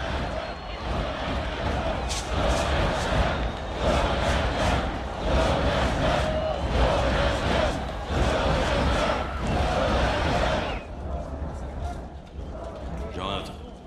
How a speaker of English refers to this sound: So there you go. The crowd's chanting his name.